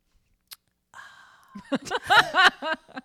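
Wine is poured into a glass: a soft tap, a thin rising trickle, then a quick run of bubbly, gurgling glugs. No one speaks.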